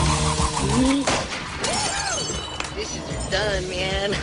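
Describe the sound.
Dishes smash in a series of loud, sharp crashes with ringing, shattering debris, while voices keep talking and exclaiming over the breakage throughout.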